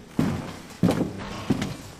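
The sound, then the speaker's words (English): Three heavy footsteps come towards an inn in a slow, even rhythm, each a dull thud on a hard floor, clear with no talking. “And at just that moment, they heard footsteps coming towards the inn.”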